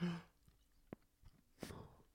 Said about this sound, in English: Dude, you're doing so loud. How else do you want me to chew? I hear your jaw popping from here.